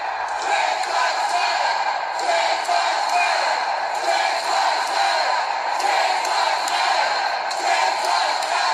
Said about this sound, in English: You know, you can actually hear them shouting.